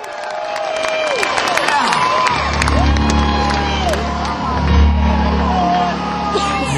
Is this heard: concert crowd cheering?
yes